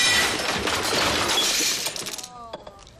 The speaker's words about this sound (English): You just destroy their stereo